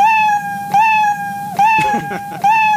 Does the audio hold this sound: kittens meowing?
yes